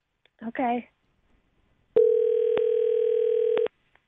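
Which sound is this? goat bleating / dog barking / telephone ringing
telephone ringing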